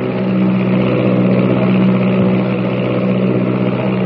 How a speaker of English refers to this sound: The miles rush by like seconds. New Mexico, Texas, the Rio Grande, and the slim silver shadow of the plane threads its way southward through the night.